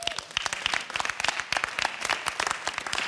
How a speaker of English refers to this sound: Why don't you clap for yourself?